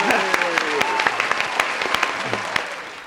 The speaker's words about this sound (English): Editor, you can add claps right now just for my personal pleasure. We'll just grab them.